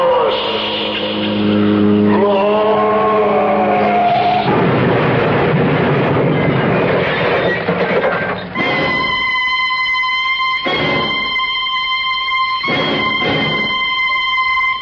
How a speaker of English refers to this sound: Woman plunges to fiery death off Coldwater Canyon. Both car and driver completely destroyed by fire.